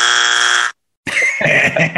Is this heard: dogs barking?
no